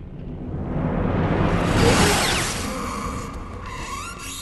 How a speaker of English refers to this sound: His head being cut off, it just has this really cool... And just like, it just echoes. Like, it's this really cool sizzling slash noise.